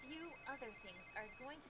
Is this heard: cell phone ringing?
yes